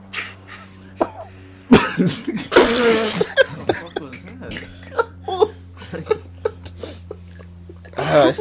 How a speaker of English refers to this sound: What was that, bro? It was a cough.